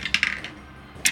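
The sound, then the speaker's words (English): Dice clatter across a hard tabletop in a quick burst of sharp clicks, then a brief pause before one last bright knock as they settle. Fairly loud, with no voices. “I'm using different dice, everybody. Just be aware.”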